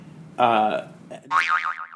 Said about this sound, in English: Gotta beep that.